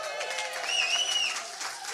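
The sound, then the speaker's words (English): A roomful of audience members gives a massive cheer on request, clapping loudly and steadily, a dense wash of applause with high whoops and whistles rising over it for a couple of seconds. “So why don't we here in the room, so that the people at home can hear that, we'll all give a massive cheer.”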